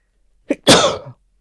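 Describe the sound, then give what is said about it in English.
A single sharp sneeze, fairly loud: a quick catch of breath, then an explosive, airy burst that fades within half a second. No talking. “Bless you.”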